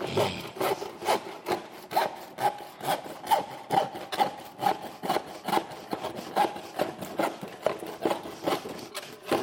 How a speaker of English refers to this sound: I got my little handsaw here. I'm a pretty good sawerer.